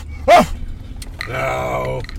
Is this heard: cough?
no